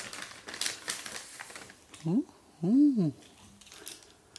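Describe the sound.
Crisp crinkling and rustling of a paper bag being opened, with rapid papery clicks at first, then a couple of short voiced murmurs from a person over quieter rustling.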